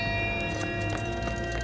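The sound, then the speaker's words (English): A hand bell rung by Constable Ichabod Crane in a colonial setting rings in a steady rhythm, its repeated strikes landing about three times a second over a sustained, shimmering metallic tone, with no voices. “So Constable Ichabod Crane is ringing a bell.”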